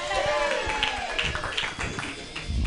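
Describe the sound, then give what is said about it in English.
A comedy show audience claps steadily throughout as a comedian from Los Angeles takes the stage, a dense wash of applause from many hands, while a voice speaks over it near the start. “Those who are not clapping, you're looking at your likes.”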